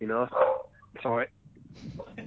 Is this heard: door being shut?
no